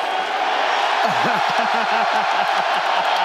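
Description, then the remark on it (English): A big crowd roars and cheers steadily as Thai Tuivasa drinks a beer out of a shoe (a shoey), with loud voices rising in rhythmic, chant-like shouts partway through over the constant wash of noise. “I've never seen so many people cheer for a man to drink a beer out of a shoe.”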